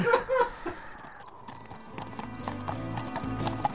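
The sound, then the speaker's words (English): Horses' hooves clip-clop in a steady rhythm over a soft ambient bed, the clattering gradually slowing to a halt as two knights pull up their horses at sunset in a clearing where an encampment has been set up. “So it's sunset when two knights pull up rain. One of them gets off the horse, the other one kind of leads it just a few feet more.”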